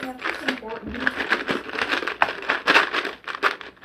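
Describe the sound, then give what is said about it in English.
A dense, continuous clatter of hands digging through a pile of hundreds of dice to find a four-sided die (D4), fairly loud, with a voice briefly audible near the start. “Dig down in my hundreds of dice to find a D4.”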